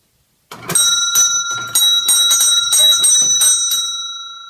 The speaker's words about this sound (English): Jules Petrie heard the jingle of the little bell above the entrance to Dark Alleyways, the metaphysical bookstore located in the heart of Royal Oak, Michigan. Such a happy little sound to the doorway of such a dark store.